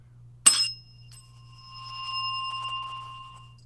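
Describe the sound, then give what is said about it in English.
A single bell, the first of two bells being compared, is struck once with a sharp metallic ping, then a clear ringing tone lingers and slowly shimmers for several seconds, moderately loud over a low steady hum. “Let's hear bell number one.”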